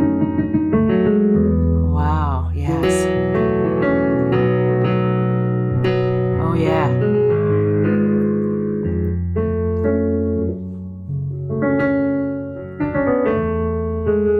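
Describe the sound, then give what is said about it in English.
A keyboard with weighted keys plays a little tune in its piano sound, with chords and runs of notes ringing out steadily and fairly loud, while people briefly exclaim over the playing. “Okay, so that's the piano sound.”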